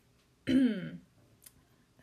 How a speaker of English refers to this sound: Let me clear my throat.